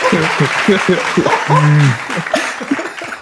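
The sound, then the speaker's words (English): An audience claps steadily after a performance in a dense, noisy wash, with voices calling out and a drawn-out cheer rising over the applause partway through. “Everyone just clapped for the logbo only.”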